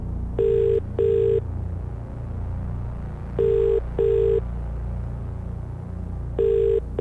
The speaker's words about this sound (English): Oh my God. Mm, I mean, it's a perkier ringtone. For some reason, that makes me think he's more of a chance to answer.